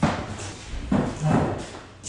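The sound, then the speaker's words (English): A door is pushed shut, with a dull thud followed by a second knock as it settles into the frame, set against quiet room tone. “Let me just shut the door here.”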